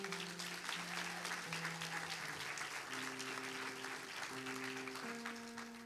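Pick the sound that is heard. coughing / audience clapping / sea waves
audience clapping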